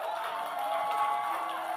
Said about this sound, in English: If you're clapping, clap properly.